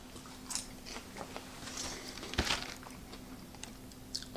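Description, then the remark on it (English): Someone munches crunchy microwave popcorn, with a series of irregular crisp crunches and chewing bites, fairly quiet, over a faint steady low hum and no talking. “But as far as you know, microwave popcorn goes, This isn't bad.”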